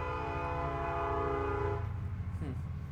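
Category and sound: vehicle, passing train with horn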